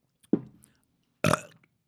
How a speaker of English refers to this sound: Oh, I'm sorry about that, listeners. That was one from the gut. That shook the table. Jesus, stop burping in the mic. I'm not trying to. Turn your head. It just comes up and it tastes so gross. I hate tequila so much.